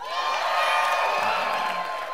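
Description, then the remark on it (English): A church audience cheers and whoops loudly and steadily for the Cincinnati Bengals, a dense wash of many voices shouting together with no pause. “So how many of you guys will be cheering for Cincinnati?”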